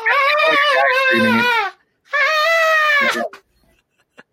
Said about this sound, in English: For anyone who wants to brighten up their day, YouTube screaming goats. So, oh, yeah. So these are goats with fucked up vocal cords. And it sounds like...